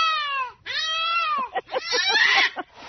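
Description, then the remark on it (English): An unhappy cat in a studio lets out two long, drawn-out, falling meows, then a quick run of choppy, strained yowls, loud with no talking over it. “We have a cat here in studio, by the way.”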